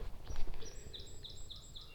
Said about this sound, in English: And yes, that was a song sparrow at the very end.